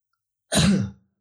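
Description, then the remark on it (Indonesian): A single deliberate cough from a voice imitating a teacher clearing their throat before speaking, fairly loud, lasting about half a second with a rough, throaty texture. “Guru lu, ya kayak gitu tadi batuk dulu biasanya.”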